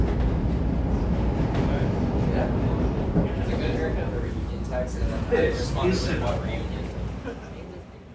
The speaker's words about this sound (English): Walking off the train at the Central Street L station, I almost forgot what I was there for.